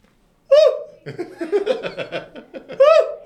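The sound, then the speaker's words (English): A voice imitates a spotted deer alarm call: two sharp, high, shrill barks about two seconds apart, with a burst of laughter filling the gap between them. “What does a spotted deer alarm call sound like?”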